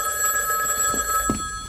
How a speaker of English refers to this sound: Oh, yeah. The phone call. And then right after that, it's sitcom magic. The phone rings.